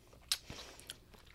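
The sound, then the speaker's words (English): Someone chewing on a lemon: a sharp, crisp bite followed by a few softer, wet crunching chews in an uneven rhythm, with no talking. “You're just like champing through this.”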